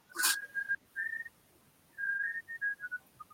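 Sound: high-pitched whistling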